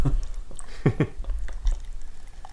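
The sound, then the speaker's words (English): Beer pouring into a glass in a few short gurgling bursts, moderately quiet, with a low background rumble and no talking. “All right, so while you're pouring... I'll do some beer trivia since we found some finally.”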